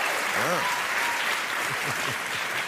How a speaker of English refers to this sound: That applause, for those of you watching on the computer who missed the show itself, means we did good today.